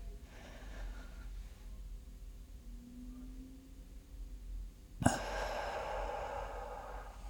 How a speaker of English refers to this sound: So actually, when you're deep breathing, you need to be filling your lower part. So when you breathe in, you're going to go.